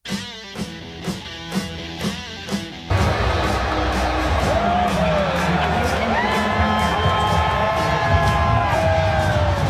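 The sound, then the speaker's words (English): A few seconds of rhythmic, evenly spaced thumps give way to a sudden, loud roar of a fight crowd cheering at the UFC bout between Conor McGregor and Dustin Poirier (their third fight), with yells, whoops and whistles sustained to the end. “The cheering you are hearing might be for implicit bias, but the reality is it's not.”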